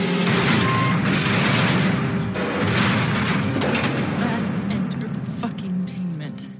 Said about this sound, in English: And before he walks out, we hear like this machinery engine sound starting up. Yeah, all these gears. With the gears, yep.